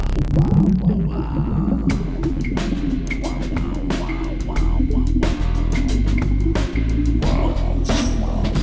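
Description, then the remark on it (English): An old pressure cooker pot played as an instrument, with irregular sharp metallic strikes over a deep, booming resonant hum, opening with a swooping pitch glide; no one speaks. “I play a little thing, which... it's an old pressure cooker pot.”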